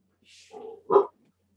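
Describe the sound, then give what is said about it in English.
A car horn outside, made to sound like a dog's bark: a brief breathy rasp, then one sharp, fairly loud bark-like honk that cuts off quickly, with no voices. “Outside, you hear the bark of car horns. On this world, they've made them all sound like animals.”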